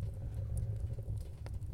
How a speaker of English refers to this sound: The rain has finally stopped, but the sound of the fire still crackles in the background.